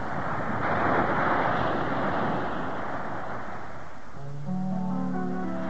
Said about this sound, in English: Let's have a brief moment here between songs to go over to the nearby ocean to hear the waves of Waikiki.